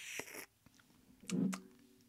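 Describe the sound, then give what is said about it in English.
A quick sip of a drink: a soft slurp with wet mouth clicks, then a low gulp and a few smacking sounds, otherwise quiet. “Little sip.”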